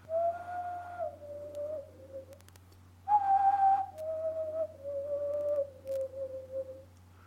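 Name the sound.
person whistling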